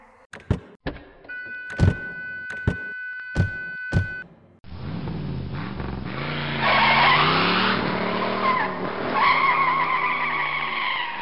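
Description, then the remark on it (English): A few sharp thuds and clicks, like doors slamming, give way to loud tire squeal and a car engine roaring as the vehicle skids and speeds off, with no talking. “Get in the car.”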